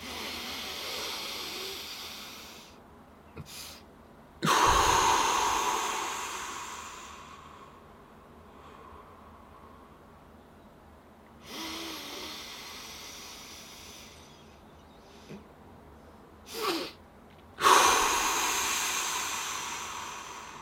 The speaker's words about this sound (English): stop for like a second and then just squeeze in another part of the breath and then just exhale out of the mouth